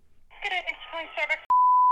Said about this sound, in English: Folks, it's ringing.